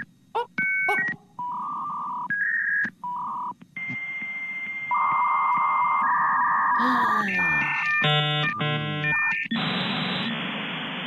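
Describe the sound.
A computer mainframe sound effect for the BetQL mainframe: electronic beeps and boops, short bright tones, then longer sustained pitches shifting up and down, ending in rapid chirping bursts and a hiss, with a brief vocal exclamation.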